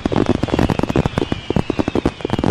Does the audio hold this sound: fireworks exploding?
yes